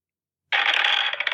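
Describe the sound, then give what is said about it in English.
A canned dice-rolling sound effect from a phone app, played for a roll of 2d6: after a moment of silence, a sudden bright, dense clattering rattle plays on its own for under a second, tinny. “Okay, I'm gonna turn up my volume on my phone because the I guess canned audio of the dice rolling is very funny, but this will be the only time I do it.”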